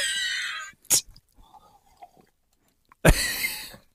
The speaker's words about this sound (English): There's another, and by the way, have a sip of coffee.